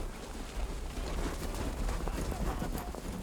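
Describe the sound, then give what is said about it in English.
Horse hooves clip-clop in a quick, steady rhythm, loud, over a continuous low rumble that fills the background. “The horse has played a vital role in human history.”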